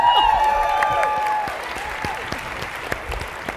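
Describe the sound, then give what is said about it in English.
An audience at a debate breaks into a round of applause for the two debaters, a dense, steady patter of many hands clapping that holds fairly loud throughout, with a few whistles and cheers rising over it at the start. “How about drinks. A nice round of applause for both of them?”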